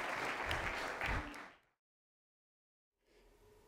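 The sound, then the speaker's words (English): An audience at a church service applauds loudly, a dense wash of many clapping hands that fades out after about a second and a half, followed by a silent pause and then faint background noise. “Can we give them a wonderful hand clap?”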